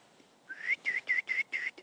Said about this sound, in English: I wish I was better at whistling.